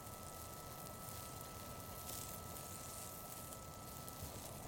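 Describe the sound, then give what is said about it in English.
Hot dogs sizzle on a BioLite grill that came with a camp stove, on a porch, a steady, soft crackle and hiss that continues unbroken for several seconds with no voices. “If you're wondering whether the entire ad is going to be spent listening to a hot dog sizzle, the answer is yes.”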